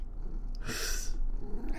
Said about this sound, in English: Oh, and that's the cat. The cat says goodbye.